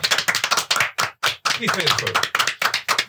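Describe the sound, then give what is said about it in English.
A brief, uneven burst of hand clapping, loud, with sharp irregular claps running for a few seconds while a voice talks briefly underneath. “Wait, you're not going to give me like a round of applause?”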